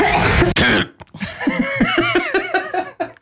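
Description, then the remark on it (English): A woman lets out a couple of harsh, breathy coughs, then they give way to a run of rhythmic, voiced laughter that bubbles on for a few seconds. “I'm gonna edit in those coughs right now.”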